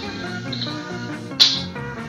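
A 1970s pop record plays at moderate volume, layered sustained tones with a bright, chirpy high accent partway through and no one talking over it.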